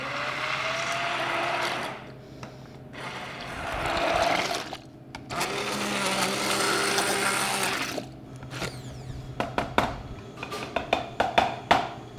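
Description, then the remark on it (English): An immersion blender whirs loudly in several long bursts, its motor pitch shifting as it purées cream cheese, potatoes and broth for soup, followed by a few sharp taps and clinks once it stops. “So now that we've blended the cream cheese, potatoes, and the broth, we're just gonna stir that right back into the rest of the soup mixture.”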